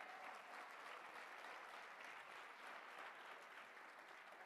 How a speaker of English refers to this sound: Now clap your hands.